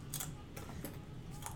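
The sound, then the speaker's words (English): Two six-sided dice (2d6) are rolled for a driving-phase roll in a tabletop game. They clatter in a few quick, irregular clicks and taps, fairly faint over a low steady hum, with no one speaking. “I will roll these dice.”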